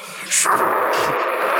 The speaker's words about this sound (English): However, with the effect of the erupted earth and that daylight, it inadvertently calls in a high explosive round from Slackjaw. All of you hear the atmosphere above you.